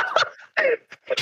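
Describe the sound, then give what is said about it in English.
A dog whimpers and lets out a few short, high yips in quick succession, with brief pauses between the whining cries and no one speaking. “Can you let out the dogs out?”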